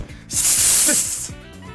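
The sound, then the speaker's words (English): A person makes a drawn-out hissing sound with their mouth, imitating a snake, a steady breathy hiss lasting about a second, fairly loud, with faint background noise around it. “Snake noise.”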